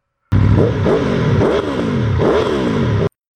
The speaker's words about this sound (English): Human controllers were firing up the motorcycles. I could hear the sputtering roar of the engines. In all, 15 Yamahas and Kawasakis came up through the hole.